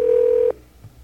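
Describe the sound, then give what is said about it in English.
A single steady telephone dialing tone, as a phone call is placed, sounds loudly for about half a second, then cuts off abruptly, leaving faint low background noise with no talking. “If your phone's ringing right now, it's me.”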